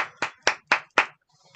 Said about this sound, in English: I'll probably edit in some applause, some generic applause sound, but just in case I don't.